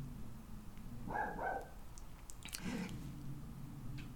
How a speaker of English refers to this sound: you're going to hear Dexter barking his head off in the background because that's what he's doing